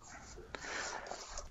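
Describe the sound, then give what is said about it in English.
A dog makes restless noises in a room, breathy snuffling and a brief sharp sound, over a steady background hiss with a faint murmur of voices. “No, I'm yelling at my dog.”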